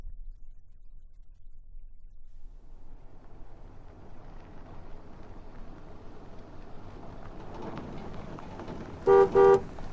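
A truck's engine rumbles and builds steadily as it arrives to pick someone up, then its horn gives two quick, loud honks near the end.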